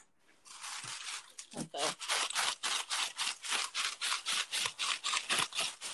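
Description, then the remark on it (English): A dry leaf rattle shaken in quick, steady pulses, producing an airy, crunchy rustle that repeats roughly three times a second, bright and hissy, with no voices over it. “And sometimes hearing that, like, it's a leaf rattle here. Let me shake it.”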